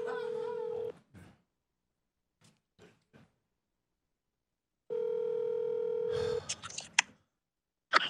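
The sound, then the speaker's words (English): Two long electronic ringback tones sound over a speakerphone, separated by a few seconds of quiet with faint clicks, followed by a brief burst of noise as the call connects. “Yeah, call him up.”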